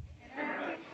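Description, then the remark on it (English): A person's voice does a single drawn-out "moo," imitating a cow as the punchline of an interrupting-cow knock-knock joke. The call is fairly loud and held for about half a second, rising in the middle before it trails off. “Moo!”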